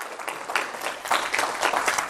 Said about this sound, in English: Give the Lord a hand clap because you're not like that anymore.